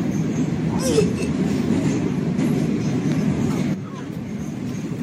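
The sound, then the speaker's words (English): Steady low rumble and rattle of a subway car in motion, loud and continuous, with faint squeaks and a brief screech near the start, easing slightly toward the end. “This is, well, listen, every single one of the people on this train.”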